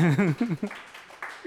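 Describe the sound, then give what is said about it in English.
A loud voiced cheer or shout gives way to a scattered patter of audience clapping, fairly soft and uneven, for about a second, as a guest is welcomed at Open Art Gallery during a pop culture show. “Keep clapping, guys.”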